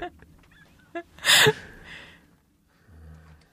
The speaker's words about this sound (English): Fucking crows.